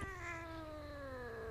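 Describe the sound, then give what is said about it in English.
A female cat that wants to cuddle lets out one long, drawn-out meow that slowly falls in pitch, loud, with a low hum running underneath. “Jesus please get the Christ. cat away. She Yeah. wants to cuddle.”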